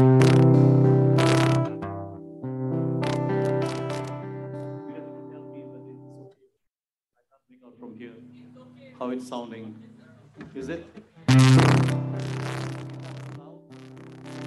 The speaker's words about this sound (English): Okay, the guitar is too loud now. Please balance the voice and the guitar properly. I can't hear my voice coming from this speaker. Only the guitar and some reverb.